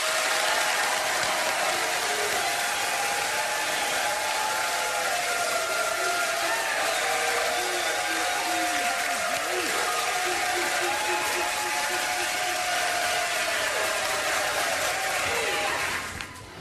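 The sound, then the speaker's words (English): Sustained, dense applause from a sizable audience, steady and full for about sixteen seconds before tapering off abruptly at the end, with some crowd murmuring mixed in. “Now, not quite going crazy, but robust applause in three, two, one.”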